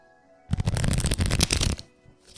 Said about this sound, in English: Does anyone play Texas Hold'em poker? Because this is poker he's going to shuffle on the mic. Hold on.